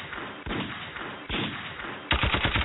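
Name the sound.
gunfire sound effect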